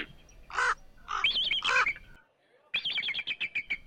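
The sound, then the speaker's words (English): Harsh crow caws ring out, a few drawn-out calls followed after a brief pause by a rapid string of clipped, rhythmic caws. “Bear, bird, very easy for me to pick up, but crow, it's really a strange dialect, if you ask me.”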